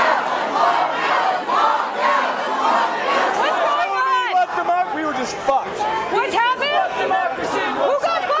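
A large protest crowd shouts together in loud, ragged waves during the Democratic Party's nomination of Hillary Clinton for President, many voices rising and overlapping into a continuous roar of chanting and yelling with no single voice standing out.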